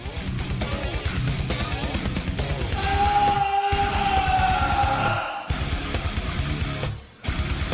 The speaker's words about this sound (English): So Omar is very distraught. He does have that amazing scream that he does when he's looking at the body.